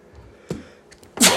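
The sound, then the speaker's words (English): A single loud, explosive sneeze bursts out at the end after a quiet stretch, with a brief, softer breathy sound shortly before it. No one speaks. “Bless you. Bless you.”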